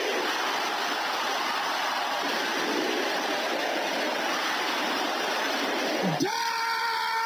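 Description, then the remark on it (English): A church audience at prayer shouts a declaration together in a loud, continuous roar of many voices lasting about six seconds, then one voice rises in a sustained, ringing tone near the end. “Can I hear you shouting that?”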